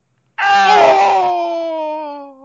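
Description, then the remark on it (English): A man's voice imitates the Final Fantasy Tactics video game death yell: one loud, strained cry that bursts out suddenly, then slides slowly downward in pitch as it fades over about two seconds. “right now that when we die we'll yell out that the Final Fantasy Tactics death yell.”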